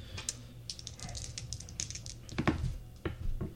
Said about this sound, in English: So I need someone to make a D100 roll for me. I'll do it. That's okay. I got a whole big giant thing of dice, my dude.